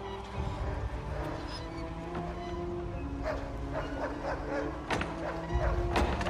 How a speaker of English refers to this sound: Yeah, could you imagine, like, just sitting there and, like, the dog's just barking all the time now? Right? Never stops.